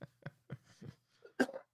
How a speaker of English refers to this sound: I keep coughing. I'm sorry.